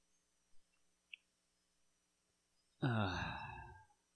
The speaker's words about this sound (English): That was some deep, like, yawn.